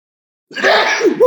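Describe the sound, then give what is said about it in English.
A single loud sneeze bursts out after a moment of silence, a sharp breathy blast that trails into a short voiced tail. “Excuse me. I got to sneeze.”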